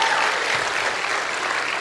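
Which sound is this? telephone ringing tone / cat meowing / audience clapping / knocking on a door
audience clapping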